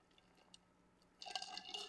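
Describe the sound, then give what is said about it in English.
Someone drinks water: a second of near-silence with tiny clicks, then soft, wet sipping and swallowing sounds. The sound is faint and no one speaks. “So before I jump in, I'm going to drink some water.”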